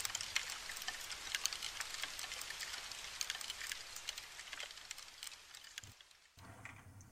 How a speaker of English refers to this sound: Without context, the sound is quite pleasant. However, now that you know that you're listening to little bugs chewing on wood, you might have a different reaction.